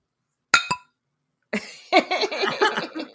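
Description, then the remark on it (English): Two quick, bright clinks of a Denmark drinking glass tapped against a microphone as a toast, loud with a short ringing tail, followed after a pause by a stretch of busy, muffled vocal noise. “I'm just gonna bump my Denmark glass up against my microphone. I'm gonna make the sound.”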